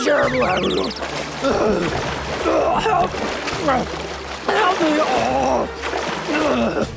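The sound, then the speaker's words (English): Rough seawater churns and splashes continuously and fairly loudly in strong wind, with excited, strained voices crying out over the turbulent water throughout as a swimmer drowns. “The wind and waves are strong in the sea, and a light float won't be of any use.”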